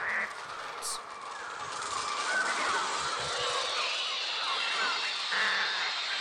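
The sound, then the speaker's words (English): A dense, continuous din of cawing crows from the trailer of Alfred Hitchcock's film The Birds fills the air, harsh overlapping calls from a large flock, with a few louder caws standing out near the start and end. “Oh, prophetic. There it is. The birds.”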